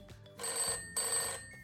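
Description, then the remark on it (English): An old-style telephone bell rings in two bursts, a bright metallic trill, then a short pause, then another trill. It is clear, with no talking. “She did get a taste of tough times, though, after one spine-tingling phone call.”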